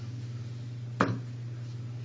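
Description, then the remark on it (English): A single sharp knock on a door, one brief hard rap, rises out of a steady low background hum, with no voices. “There's a knock at the door. Normally somebody would ring the bell, but somebody's knocking.”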